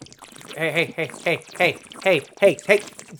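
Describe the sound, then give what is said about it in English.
Johnnie Walker Black Label whisky glugs out of a bottle, poured out as a toast to a friend, in a rapid string of hollow, gurgling bursts, fairly loud, with a few brief voices mixed in. “pass me that bottle of Johnny Black Label”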